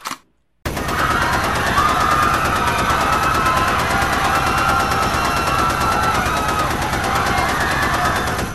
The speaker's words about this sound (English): Thank you for surviving the gunfire that Justin just inserted.